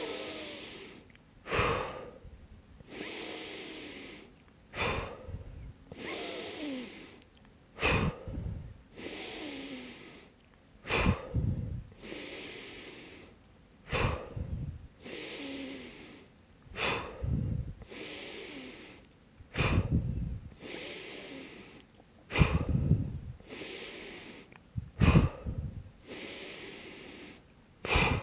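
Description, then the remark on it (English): Deep, rhythmic breathing in and out repeats steadily during a breathing exercise, each forceful breath loud with a noisy, airy rush, cycling about once every two seconds with no talking. “Breaths to go. Maintain your focus on your breathing, on your body, and in your mind. 20 to go.”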